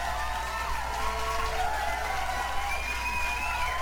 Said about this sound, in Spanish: Es un pinche aplauso para la gente que escucha esto en vivo. Gracias, cabrones, gracias.